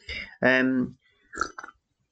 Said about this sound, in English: Oh, sorry, it's a very loud sip.